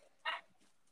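A single short, sharp dog bark standing out against a quiet background with no one talking.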